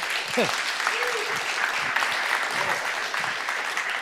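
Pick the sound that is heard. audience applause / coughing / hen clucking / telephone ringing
audience applause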